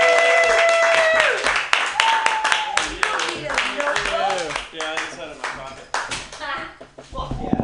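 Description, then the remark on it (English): An audience at a comedy show claps and applauds for the next comedian coming up to the stage, a dense, continuous wash of hand claps, with cheering voices and whoops rising over it throughout. “So everybody clap your hands wildly”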